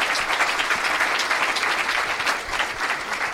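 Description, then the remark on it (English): Steady audience applause for first-time guest Josh Wolf, a dense wash of many hands clapping at a fairly loud, even level for a few seconds with no voices standing out. “And let's hear it for first-time guest Josh Wolf, everybody.”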